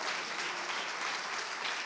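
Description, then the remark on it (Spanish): An audience at a sermon applauds the Lord together, a dense, steady wash of many hands clapping at even loudness throughout, with no one speaking over it. “¿Cuántos dan un aplauso al Señor por esta palabra?”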